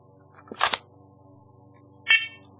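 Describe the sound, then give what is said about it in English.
A couple of clicks and rattles, then a single short, shrill beep from a smoke detector whose test button is held while batteries are inserted, with multiple detectors connected; high-pitched and fairly loud against a low steady hum. No one speaks. “Okay, so we got that beep.”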